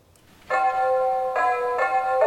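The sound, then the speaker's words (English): Festive bells ring out loudly, a bright run of sustained, ringing tones that shift to new notes every half second or so, with no voices. “The festive bells are ringing loud”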